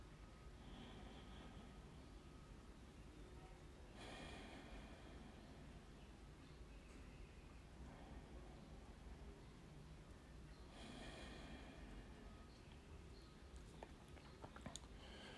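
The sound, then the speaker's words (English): Quiet breathing: two slow, airy breaths several seconds apart, each a soft whooshing swell that fades back into a low hum, with no talking. “But take a few breaths in and out, and as you're breathing in and out, try to the best of your ability, to connect with that thing inside of you that we call God.”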